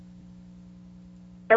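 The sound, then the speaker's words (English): A steady low phone-line hum runs quietly during a phone call, then a single loud keypad dialing tone cuts in abruptly at the very end as a cheek presses the phone's keypad buttons. No one speaks. “Is your cheek touching the phone pad? Because I keep on hearing like it's dialing the numbers.”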